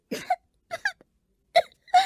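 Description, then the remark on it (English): Several short, harsh coughs come in uneven bursts, a couple of them in quick pairs, fairly loud with brief silences between and no talking, from a person coughing on cigarette smoke while learning to smoke. “It took a while to learn to smoke without coughing, but at last I could deal the cards all the way around the table, with a smoking cigarette dangling from the corner of my mouth.”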